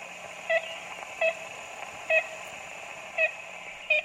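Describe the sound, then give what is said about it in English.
Ivory-billed woodpecker calls played from a tape made in the Singer Tract in the 1930s: five short, nasal, tooting notes at uneven intervals, each clear and moderately loud over a steady background hiss and hum. “Jackson plays the same tape made in the Singer Tract in the 1930s, hoping for a response”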